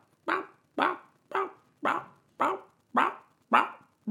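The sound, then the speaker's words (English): A dog barks steadily and insistently for attention, eight loud, evenly spaced barks in a row, with no voices in between. “And then, like, if I don't pay attention to him when he starts barking like that, he'll start, like, barking even more.”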